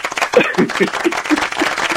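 A short burst of applause, a steady wash of clapping from a small group mixed with a few voices calling out, moderately loud and continuous throughout.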